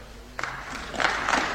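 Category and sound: crowd, sparse applause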